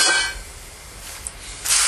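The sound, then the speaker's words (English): Water heating toward a boil on a stove gives off a steady, airy hiss over a low rumble, with louder bursts of hissing at the start and again near the end. “Is that even on, or are you just waiting till that boil?”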